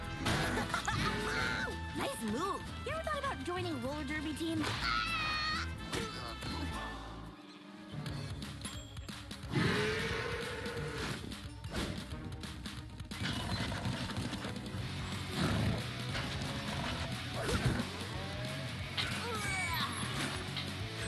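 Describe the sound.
An angry cow rampages, crashing and stomping in a loud, chaotic scene, with repeated heavy thuds and smashes over about twenty seconds and voices shouting amid the din.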